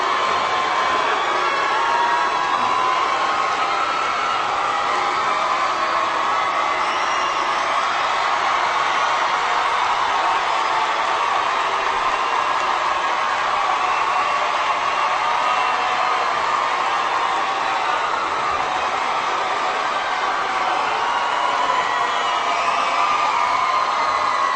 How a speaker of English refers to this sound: You can kind of hear the boos coming in as the, like, it sounds different because a boo was such a low decibel tone and then the girl screaming is so high. But clearly there's a lot of boos coming in for this. I hear it now.